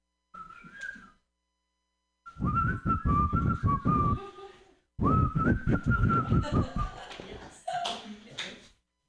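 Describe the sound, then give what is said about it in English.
A person whistles a wavering, warbling tune, starting with a short burst and then two longer phrases separated by brief pauses, fairly loud with breathy, rough noise underneath. “Can you whistle? Who can whistle here?”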